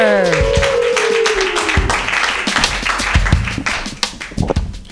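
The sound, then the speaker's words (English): An audience claps loudly and steadily for several seconds as a comedian is introduced, with a whooping cheer and overlapping voices at the start before the applause begins to thin out near the end. “Clap your hands wildly”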